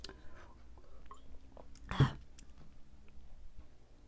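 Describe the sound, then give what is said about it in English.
Someone takes a drink of water: a single soft gulping swallow midway through, surrounded by quiet mouth clicks and faint smacking, with no talking. “Hang on, let me drink water.”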